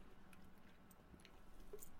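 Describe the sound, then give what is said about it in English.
Someone quietly sips Coke from a can, with soft wet mouth and swallowing sounds and a few faint fizzy ticks, and no talking. “I'm taking a sip of my beverage. I will give you a hint. It's carbonated.”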